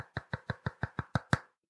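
Eight quick, evenly spaced knocks on a door in a steady rapid rhythm, each a dull thud. The final knock lands hardest, and then silence follows, with no voices.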